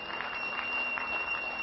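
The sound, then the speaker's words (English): An audience gives the Lord a clap offering, clapping together in a steady, dense wash of applause, many hands blending into a continuous crackling roar that stays at an even, moderate level throughout, with no voices. “Would you just give the Lord a clap offering?”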